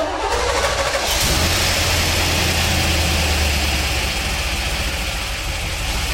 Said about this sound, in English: He fired up his two muscle cars. First, the 1971 Corvette. It's really cool to hear. Somehow, when it's recorded, you can hear the tapping. Their hydraulics run quieter.